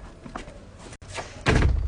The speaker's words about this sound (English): And then a door opened.